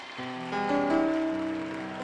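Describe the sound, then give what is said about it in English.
A crowd claps steadily for the Lord in a dense, rain-like patter, mixed with sustained organ-like chords that swell slightly midway; no one speaks. “If you believe that, clap your hands for the Lord.”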